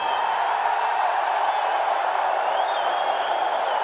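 A large wrestling arena crowd reacts to Torrie Wilson, roaring in a steady, dense wall of noise for the whole stretch, with faint boos buried in the mix and a few thin whistles rising above it.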